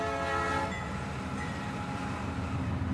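A high-speed train rushes by with a steady, heavy rumble, its horn sounding briefly at the start before fading into the continuous roar of the passing cars. No one speaks.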